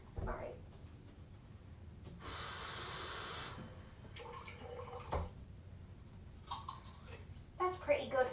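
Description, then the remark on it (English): Water is poured for a pet hamster in a steady, hissing stream for a second or so, followed by soft drips, light clinks and rustling handling noises at a quiet level. “Oh, wait, she needs her water.”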